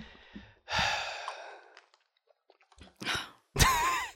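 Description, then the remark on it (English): A noisy slurping sip of Tea Pigs Snooze herbal tea from a cup, followed by a quiet pause, a few soft clicks, and then a couple of breathy exhalations like a satisfied sigh. “Let me take another sip.”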